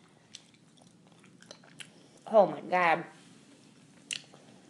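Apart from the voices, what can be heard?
chewing candy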